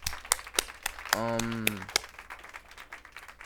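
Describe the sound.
A small group claps in loose, uneven bursts of sharp slaps, while a voice briefly holds a sustained cheering tone partway through.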